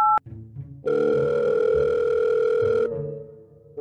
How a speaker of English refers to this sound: The phone would ring for a while, but no one would answer.